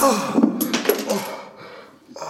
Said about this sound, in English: Virat couldn't take it anymore. He picked up the dice pieces and threw them at Yudhishthir.